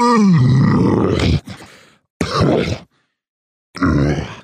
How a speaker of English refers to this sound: I'm having a hard time understanding you. Can you just try clearing your throat out one more time, big guy, please? Can you?